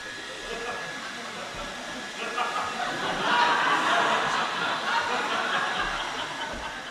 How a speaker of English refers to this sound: Right, you want to stand this side and blow that way, please. Nothing happens to a tree when wind hits it. What happens to a big old bunch of leaves when you stick a hairdryer on it?